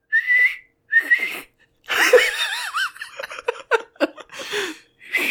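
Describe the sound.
A person whistles two short, shrill blasts in imitation of a whistle used at soccer or other sports games, then breaks into wheezy, giggling laughter with some breathy vocal sounds.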